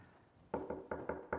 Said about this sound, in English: Knock on the door, and it was the milkman.